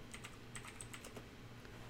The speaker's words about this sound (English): you doing some typing? Some single finger typing over there? No, I do like three fingers on each hand.